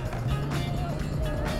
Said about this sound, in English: heading into downtown Toronto now, and we're going to take you guys on a little tour of some of the very Canadian things that you can do in Toronto. And the first thing you'll note is Toronto traffic.